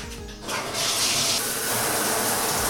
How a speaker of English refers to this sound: All right, yeah. So having a little shower is really invigorating. Really is a great way to start the day.